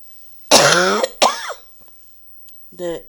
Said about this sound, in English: I'm sorry for coughing. It will be more coughing.